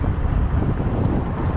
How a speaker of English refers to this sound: A little bit of wind noise. Here we go. So not great audio, but definitely not a V8.